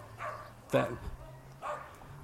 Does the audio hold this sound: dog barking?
yes